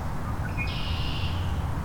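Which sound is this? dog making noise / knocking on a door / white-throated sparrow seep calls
white-throated sparrow seep calls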